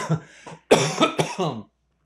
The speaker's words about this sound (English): excuse me, got a coughing going on.